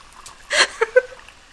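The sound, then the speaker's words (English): A short splashy rush of wine poured from a bottle into a very large wine glass, followed by two quick hollow glugs, fairly quiet, with no one talking. “Yeah, I'm still pouring. I'm not gonna talk until it's done.”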